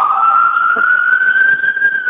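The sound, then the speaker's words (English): An emergency vehicle siren wails steadily, its single tone slowly rising in pitch as it passes by, loud and sustained over faint traffic rumble. “so we were alerting a little siren going by here.”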